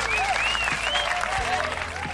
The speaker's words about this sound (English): You know, shout out, salute to them. Round of applause to Team Canada.